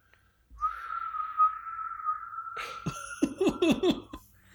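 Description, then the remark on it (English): A single long, steady whistled note, clear, drifts slightly downward for about two seconds, then gives way to a few short breathy bursts that sound like quick laughter. “Do you hear that whistle on the wind?”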